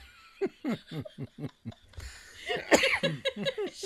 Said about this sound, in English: He keeps coughing. He's like, fuck this film.